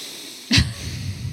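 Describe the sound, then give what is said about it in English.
A sharp, airy intake of breath starts abruptly, followed by a sustained breathy rush as someone deliberately draws in a deep breath, with no talking. “because you're consciously taking in deep breaths”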